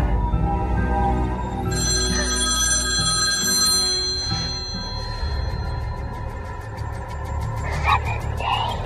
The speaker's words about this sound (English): And as soon as it's over, your phone rings. And what they say is, you will die in 7 days.